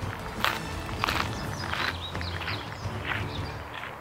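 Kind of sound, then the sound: human body sound, footsteps walking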